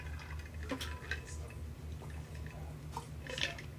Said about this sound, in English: Now, let me take a sip of my drink here before we talk about this.